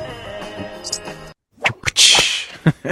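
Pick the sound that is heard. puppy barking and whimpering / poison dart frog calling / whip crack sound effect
whip crack sound effect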